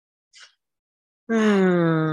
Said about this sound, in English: You're breathing without thinking about it. But I want you to think about it. Take a deep breath.